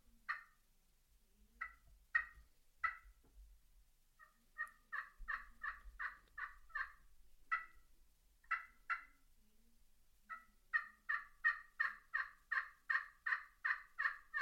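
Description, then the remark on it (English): Yelps from a slate friction turkey call, sharp raspy notes in short runs and then a long, quickening series of evenly spaced yelps, fairly loud with no talking. “that slate has this sound that makes a tree yelp a little bit better than I would say an aluminum top, copper top, or a glass top.”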